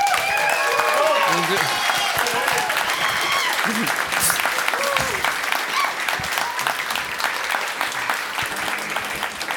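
An audience applauds steadily for several seconds, a dense crackle of clapping with cheers and whoops rising over it, loud throughout and tapering slightly toward the end.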